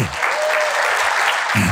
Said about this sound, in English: In fact, when you guys are at home watching online, they're the people. In fact, give them a hand clap right now.